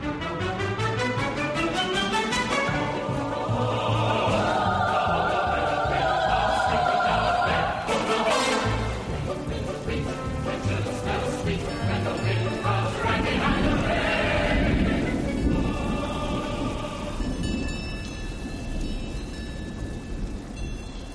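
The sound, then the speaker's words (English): Cowbells worn by a group of cows clang and jangle in an irregular, overlapping jumble of metallic tones, steady and fairly loud, on an alpine mountaintop in the Swiss Alps near the town of Les Moulins, as the cows seek refuge from an approaching storm, over a low rumbling wash. “We leave you this week high on an alpine mountaintop where a group of cows, their bells clanging in the breeze, seek refuge from an approaching storm.”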